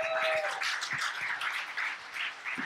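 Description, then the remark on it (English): Steady applause from an audience, a dense, continuous patter of many hands clapping at moderate volume for a few seconds, with no voices on top. “You know, when I shout out to that, clap it up for that.”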